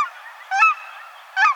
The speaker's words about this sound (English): You're hearing cackling geese, which sound like a falsetto version of the familiar Canada goose. Cackling geese resemble a toy version of Canada's, with shorter necks, rounder heads, and stubbier bills.